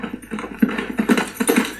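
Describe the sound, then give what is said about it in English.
A horse's hooves beat in a quick, uneven rhythm, drawing nearer at moderate loudness, with a faint hum of background noise and no voices. “Here comes the same horse!”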